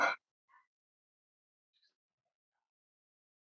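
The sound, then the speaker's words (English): A voice imitates one sharp, audible gasp heard over a phone call, a quick breathy intake at the very start, followed by near silence with a couple of faint, tiny sounds. “And this gasp, an audible gasp, hit up the phone.”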